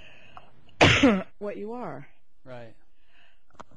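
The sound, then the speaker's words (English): A single loud, sharp sneeze bursts out, with a brief two-part explosive rush, and then a person resumes speaking at a normal, quieter level. “Gesundheit.”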